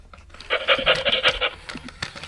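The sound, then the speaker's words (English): A fur-covered mechanical robot toy dog the size of a normal dog pants in a quick, rhythmic run of breathy huffs, fairly loud, lasting about a second before trailing off into softer clicks and whirs. “saw a mechanical robot dog named Biscuit and purchased it for me for Christmas”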